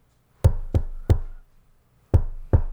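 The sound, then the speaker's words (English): Five sharp knocks on a car, fairly loud: three quick raps, a short pause, then two more. Each hit is crisp with a brief ringing decay, and nobody speaks. “So I knock on the car and I do I think it's one”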